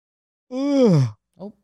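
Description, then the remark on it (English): A long, drawn-out human yawn, voiced, sliding downward in pitch before trailing off, followed by a brief short vocal murmur. “Yawn.”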